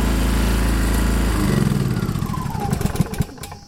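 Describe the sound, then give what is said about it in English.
A petrol generator engine powering a house hums loudly and steadily, working hard, then is switched off once power is returned to the house; its drone breaks into slowing, sputtering chugs that wind down to near silence over a couple of seconds. “And kill the generator. Kill the generator.”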